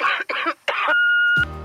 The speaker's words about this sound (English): I'm out sick today. Could you please leave a message after the beep?